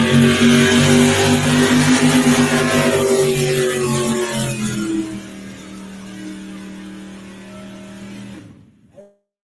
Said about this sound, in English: Neat old Ford truck here. Comes out of California. Been pulling for a lot of years. Big block Ford.